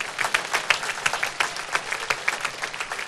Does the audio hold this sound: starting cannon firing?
no